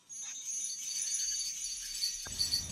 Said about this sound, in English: That's just the guided meditation music. Oh, but it had a wind chime at the beginning. So. It sounded to me like a computer calculating things, like an old-timey analog computer.